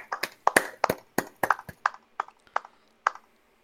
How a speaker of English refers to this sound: Should we clap? I think a soft clap is good. Golf clap? Yeah, just a soft clap. Soft clap.